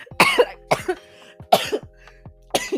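A person coughs four times in quick succession, each cough a sharp, harsh burst close to the microphone, with brief pauses between and a low steady hum underneath.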